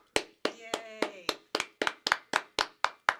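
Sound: applause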